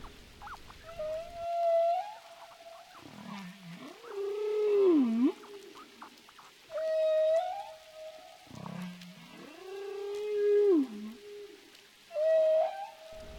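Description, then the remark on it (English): Humpback whale song rings out underwater, with rising high whistles alternating with deep, swooping moans in a slow repeating pattern, loud and resonant with no voices. “Everything about humpback whales is awe-inspiring.”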